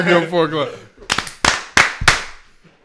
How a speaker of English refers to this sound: Two? No, for giving birth. We're giving four. Give him four claps.